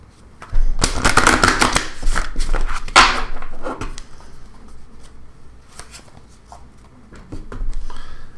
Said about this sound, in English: We give that one more shuffle.